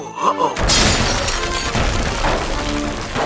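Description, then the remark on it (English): After a brief quiet moment, a nativity stable set, knocked off by the Star of Bethlehem, comes crashing over: a sudden loud smash followed by about three seconds of clattering, breaking debris, with no voices. “Man, the star knocked off the whole stable.”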